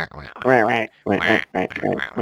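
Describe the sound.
A person imitates the echoing ducks from Silent Hill with a run of nasal, honking voiced bursts, some drawn out and some clipped short, fairly loud with brief pauses between them.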